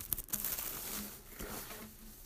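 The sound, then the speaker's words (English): Santa Belt wrapping paper crinkles and rustles as a second gift is wrapped, in a continuous, scratchy stream of soft crackles, with a few sharper snaps near the start and a faint low hum underneath. “Okay, so we're getting to the second gift, and I think I'm going to go with Santa Belt paper for this one.”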